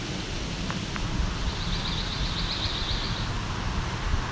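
pine warbler song

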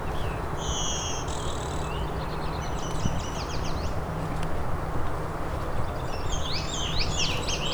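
blue-winged warbler bee-buzz song

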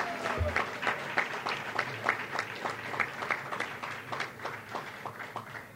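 round of applause

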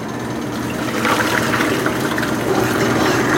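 water poured

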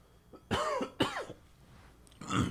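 throat clearing

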